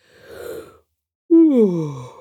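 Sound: yawn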